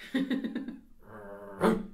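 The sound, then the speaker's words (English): A dog inside the room barks in a quick run of short, fairly high yips, then lets out a drawn-out whine that ends in one louder, sharper bark. No one speaks over it. “Dude, is that a fucking dog?”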